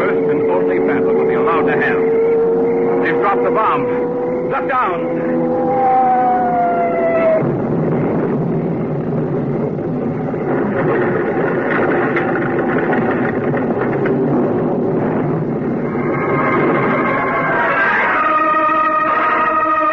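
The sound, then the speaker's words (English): An approaching airplane engine drones loudly and steadily for the whole stretch, its tone sliding and shifting in pitch, with a brighter, higher whine building toward the end. “I hear the plane.”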